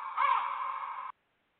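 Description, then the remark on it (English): A single raven call, harsh and drawn out for about a second, loud, ending abruptly in silence. “Well, let me go on ahead and take you out with a raven.”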